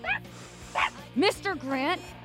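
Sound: dog barking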